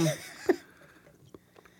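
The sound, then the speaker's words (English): Quiet chewing of a piece of food: a brief rustle at the start, then a few soft, irregular wet clicks and smacks with pauses between them. “Chew. Let that air go in there.”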